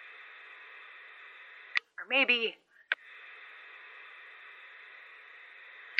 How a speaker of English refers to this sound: drove 40 miles in each direction, and the clarity of the code didn't change in any way that made any kind of sense. It would get clearer, or it'd disappear into static without any rhyme or reason. I don't know, maybe it's the hills messing things up.